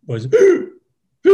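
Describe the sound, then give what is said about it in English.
A voice imitates the strained, labored gasping breaths of a two-year-old boy with a seal-like cough, two raspy voiced pulls close together, a short silence, then a third starting abruptly. Fairly loud, with no other sounds. “He was breathing like that.”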